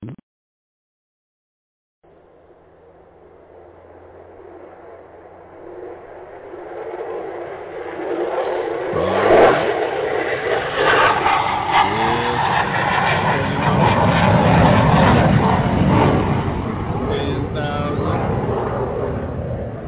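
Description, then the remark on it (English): After a moment of silence, an airplane engine roars up as if taking off, a broad rumbling whoosh that swells steadily louder and holds at full power, with faint whining tones inside. “I rubbed my two little coins together and bought me an airplane, ladies and gentlemen.”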